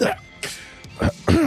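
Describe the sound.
A voice imitates someone coughing up blood: a few wet, choking cough bursts and throaty gurgles, fairly loud, spaced irregularly with brief pauses between.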